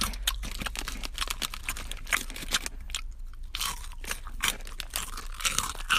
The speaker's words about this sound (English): Let me eat and chew.